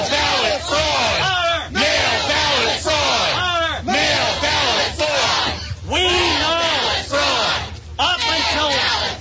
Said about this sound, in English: Listen to the crowd.